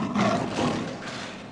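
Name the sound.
lion roaring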